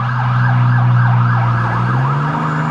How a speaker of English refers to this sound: Hold on a second. Let's let these fire trucks go through. What the hell is going on? That's the second one.